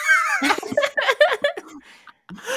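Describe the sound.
A person does a short, drawn-out vocal meow imitation of the comic character Catman, followed by a burst of quick chatter and light laughter from other voices.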